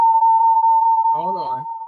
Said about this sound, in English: Hold on. Because it's the echo.